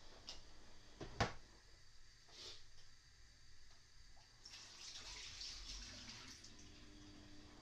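Juice drains from an opened tuna can in a soft, steady trickle, quiet, with a sharp metallic clink near the start and a slightly stronger gush toward the end.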